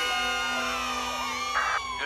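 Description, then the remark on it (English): A crowd of children cheers and whoops in applause for birthday boy Milhouse, a steady, high-pitched roar that lasts about two seconds, swelling into a louder burst of shouting near the end. “Oh, and by the way, I'd like to say thanks and applause to birthday boy Milhouse for his totally bitchin' party on Saturday.”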